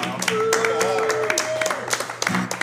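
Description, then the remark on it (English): A small group claps and applauds, a quick scattered patter of hands lasting a few seconds, with a voice calling out a sustained whoop over it, the group applauding themselves after their own performance. “You know, we wouldn't have clapped nearly that much if we weren't part of it.”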